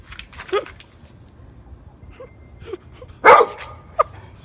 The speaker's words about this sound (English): Raccoon sex.